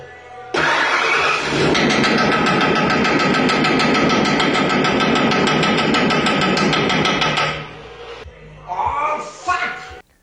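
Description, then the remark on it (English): A truck engine roars loudly with a rapid, harsh metallic knocking, as if something were badly broken, for about seven seconds; a mechanic repairing the truck is making it sound like a major engine problem. Then it cuts out and a person speaks briefly. “Check out this video of a mechanic having fun with a coworker repairing a truck by making it sound like there's a major engine problem.”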